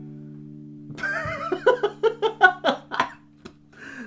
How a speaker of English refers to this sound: I don't know why laughing makes me cough. This sucks.